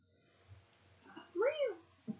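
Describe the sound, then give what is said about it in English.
A single drawn-out cat meow, rising then falling in pitch, clear, with a couple of faint short sounds just before and after it. “How many meows can you find in this episode?”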